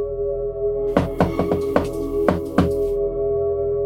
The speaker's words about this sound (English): And you make sure that you go into the back exit, and you knock on the door and you do a secret knock.